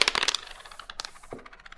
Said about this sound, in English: And the wood amplifies the sound, so you have that sense of drama. Also the dice on the wood too, you know, they'll spin quicker, they'll hit off the sides quicker.